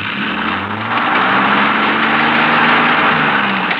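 A stuck car's engine revs hard and strains continuously as it is shoved into reverse on a canyon road, its pitch rising and wavering as the wheels can't get traction, loud with no voices.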